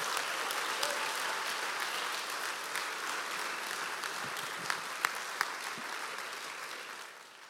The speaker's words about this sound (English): Someone physically takes a chair and puts it here because they love you and they love God. So can we just give the volunteers that volunteer on a Sunday a massive round of applause?